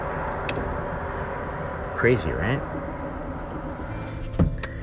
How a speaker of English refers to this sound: the pipes are just part of the property, but it just goes around the entire property, acres and acres and acres. And it's just this loud pressure steam sound all day long. You want to hear it? I'm going to open the window. Can you hear that noise?